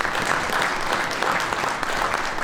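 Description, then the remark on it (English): An audience claps for a panel, a dense wash of many hands slapping at once with no pauses, holding a fairly even, moderately loud level throughout. “But if you'd please be kind enough to give the panel a round of applause.”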